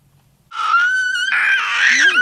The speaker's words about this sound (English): has a lot to say. Normal for a toddler, but not for his mom's work meetings.